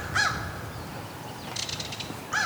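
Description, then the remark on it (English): A crow caws twice, once near the start and again at the end, with a rapid dry rattling call in between, over quiet outdoor ambience. “We got a crow.”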